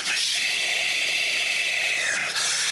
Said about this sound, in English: Just in case you didn't get enough of that breathing ass compressed. Like, just in case you weren't sure, go ahead and really nail it in the coffin there.